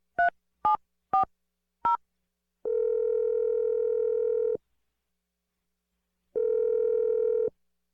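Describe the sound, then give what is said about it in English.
Four short, sharp dialing beeps in quick succession, followed by two long steady telephone tones separated by a pause, clear with no voices, as a phone number is dialed to call someone's boyfriend. “I'm going to dial your boyfriend's phone number right now and let you make your awkward Tuesday phone call.”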